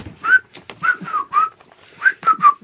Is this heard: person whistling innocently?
yes